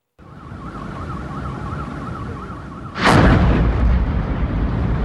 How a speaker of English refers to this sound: You just see that massive cloud of fire, essentially. This video capturing the moment that the fireball took over the night sky. Officials say a truck carrying gas exploded at a cooking gas plant. This happened around 11 p.m. local time.